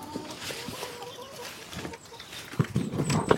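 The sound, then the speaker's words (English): Chickens peck hurriedly at feed, a busy scatter of quick tapping clicks that grows louder and denser toward the end, with soft clucks and faint chirps mixed in. “You can hear them hurriedly pecking away at their feed.”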